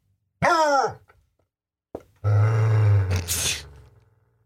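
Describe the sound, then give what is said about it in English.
A dog lets out a sharp, harmonic yelp-like grunt, then after a pause a long, low rumbling growl that rises into a rough snarl, loud with no talking, as it growls at a new puppy that has come into its space, nose to nose and licking its cheeks. “when somebody gets in his bubble, like our new puppy Opie, this kind of stuff happens”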